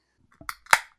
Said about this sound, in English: Cracking a cold one. Yeah. It's great. It's Canadian. Ooh. It's not a Canadian. The Lumberjack? Place. Yeah, it's Great Lakes Brewery. Canuck Pale Ale.